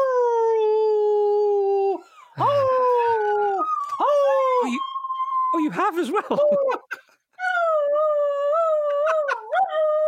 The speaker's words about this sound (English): Would you like a goodbye from the dog? Yes. Oh, yes. Hang on. I'll make him howl.